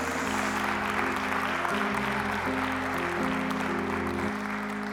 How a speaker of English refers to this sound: Come on, give God one more hand clap of praise.